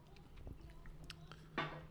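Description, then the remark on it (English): Close-up chewing on a bagel during a bagel taste test, soft crunchy bites and wet mouth sounds repeating irregularly, with a louder crunch near the end and a low hum underneath. “So I'll take a bite of both of them and give you an honest opinion”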